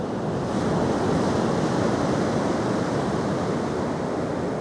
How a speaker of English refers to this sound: So, Rebecca Ramirez, almighty producer, cue the waves.